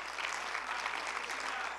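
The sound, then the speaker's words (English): An audience claps their hands in praise to the Lord, sustained, dense applause, a steady wash of many overlapping claps at fairly even loudness with no speech over it. “But give the Lord a hand clap of praise.”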